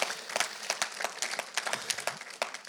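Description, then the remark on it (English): A round of applause from a crowd at an evangelistic church event, given for the Lord, dense overlapping claps with sharp individual hand strikes popping out irregularly, steady and moderately loud throughout with no voices. “Give a great, how do you say in English, a round of applause for the Lord and what he's doing.”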